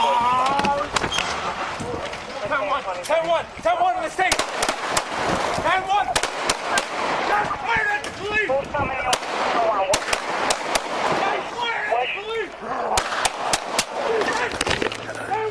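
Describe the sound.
Many sharp gunshots crack out in irregular bursts, some clustered rapidly, others spaced apart, over a continuous backdrop of overlapping, agitated voices talking throughout, from a played video of a shooting at a jail area, where a man opening a door is shot and police report an officer down.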